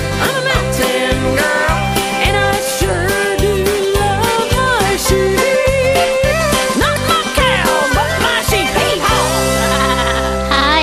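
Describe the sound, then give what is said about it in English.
Loud, wavering sheep bleats run throughout over a steady, thumping rhythmic beat, layered densely like a musical track with no pauses. “Sheep.”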